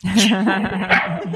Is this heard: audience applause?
no